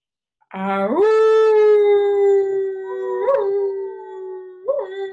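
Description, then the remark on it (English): People do a big wolf-like howl together on an inhale during a breathing exercise: it rises from a low pitch and holds steady for several seconds, with brief wavering swells near the end. Fairly loud, with no talking. “And with the next inhale, we're going to do another big howl.”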